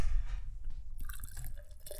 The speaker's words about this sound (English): Let me see your glass. Yeah. Thank you. This has a good pour to it. I was reading online about how to pour beer, and they say, like, you know, intentionally you're supposed to.